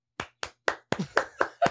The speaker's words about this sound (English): Slow clap.